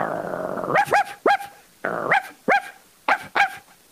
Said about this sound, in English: Whoa! Doberman Pinschers. Those are not pinching dogs. Those are biting dogs. Whoa, I don't know what to call them, a Doberman Pincher.